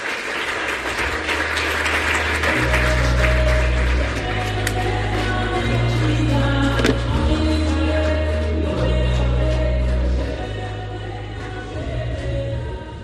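audience round of applause

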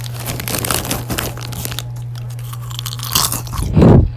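crunchy chewing of food

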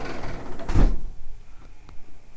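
door being closed

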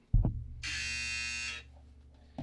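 buzzer sound effect

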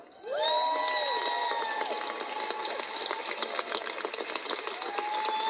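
audience applauding and cheering

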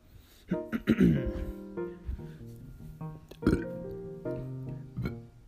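loud burp

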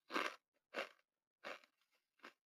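crunching a potato chip

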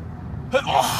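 sneeze

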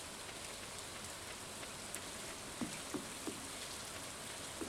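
rain falling

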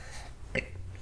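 child burping

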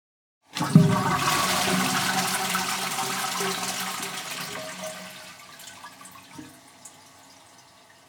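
toilet flushing

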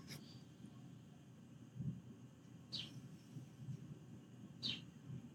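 birds chirping

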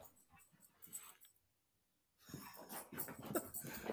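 dogs barking excitedly

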